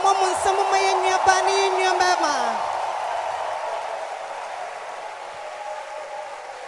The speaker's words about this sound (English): Keep clapping your hands. Keep clapping your hands. God bless you. Clap your hands for our brother and our sister.